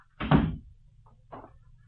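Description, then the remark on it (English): A door swings shut with a solid thud, followed about a second later by a softer click, like the latch catching. No voices are heard. “Close the door.”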